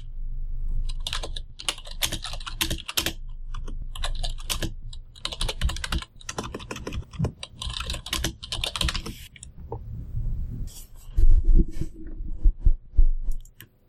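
Rapid, irregular typing on a computer keyboard close to the microphone, dense bursts of clicking keystrokes with short pauses, over a low background hum and a few soft thumps near the end.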